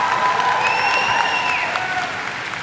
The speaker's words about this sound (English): So GMM is going to be bigger and better in the fall. And yeah, you can cheer for that.